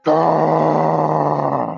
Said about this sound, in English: After perhaps a minute or so, you hear another sudden series of growls that burst into this just deep guttural roar that echoes through the forest.